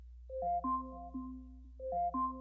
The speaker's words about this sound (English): Alexa, alarm off.